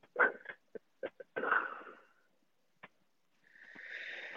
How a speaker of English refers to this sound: Sorry, got a real cough.